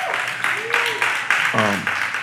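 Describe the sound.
A crowd applauds in a steady, dense wash of clapping, with a couple of brief voices calling out or whooping over it partway through.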